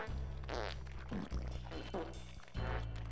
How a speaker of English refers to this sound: Bro. Do you hear the farts? Yeah, I hear the farts.